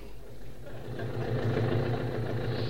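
A car engine runs steadily at a low, rumbling idle, a continuous droning hum that swells slightly toward the middle, as a couple drive out of the city on a short trip.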